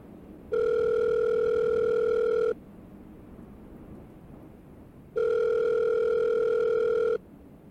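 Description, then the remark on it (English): A telephone ringing tone sounds twice, each a steady, buzzing electronic tone lasting about two seconds, separated by a pause of silence, with no one speaking. “I need to make a phone call about this.”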